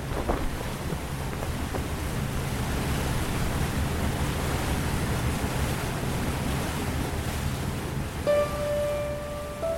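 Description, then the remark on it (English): Steady, loud rush of wind and water washing past a sailboat as a gust of wind drives it forward, continuous throughout with a low rumble underneath and a brief high tone near the end; no voices. “A gust of wind hit us, and we really started to move.”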